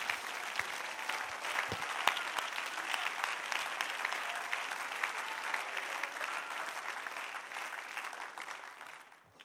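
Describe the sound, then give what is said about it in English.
An audience claps their hands in sustained, dense applause that holds steady for several seconds before tapering off at the end; no one speaks over it. “If you feel that way, I wonder if you would clap your hands in the face of what you're going through and say, I'm going to make it.”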